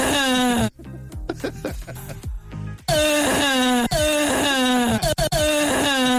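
A woman lets out a long, drawn-out moan with a wavering, sliding pitch, broken midway by short choppy vocal sounds before the loud moaning resumes and carries on to the end.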